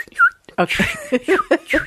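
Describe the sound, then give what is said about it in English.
Someone mimics a bird with their lips, starting with a short whistled note and then a quick run of squeaky, chirp-like bursts with a thin whistling tone running underneath. “I was just going to chirp.”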